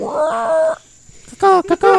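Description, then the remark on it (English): A person's voice imitates jungle animal calls: a long, wavering yowl, a brief pause, then three quick, high, strained cries, loud and cat-like. “And imitating animal sounds that are native to the jungle.”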